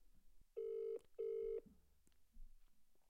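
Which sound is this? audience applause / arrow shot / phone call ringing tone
phone call ringing tone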